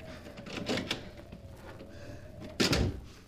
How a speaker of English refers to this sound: Here's a door. If it's only unlocked. Oh, it is.